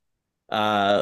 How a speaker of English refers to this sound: Fix your bird. He's okay. Very loud. Bird. Probably Hugin.